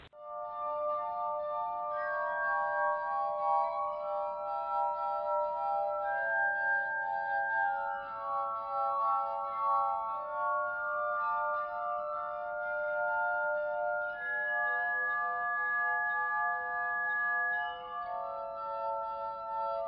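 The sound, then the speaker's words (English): Glass harmonica music plays alone: pure, ringing sustained tones glide between pitches in a slow, overlapping melody, steady and fairly loud throughout. “Well, here's just a little rendition of the glass harmonica.”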